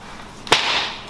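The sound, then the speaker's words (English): A single sharp crack of a dragon tongue whip lands on a person's shoulders about halfway through, a loud snapping impact followed by a brief bright hiss that fades out, with no voices. “This is a dragon tongue whip.”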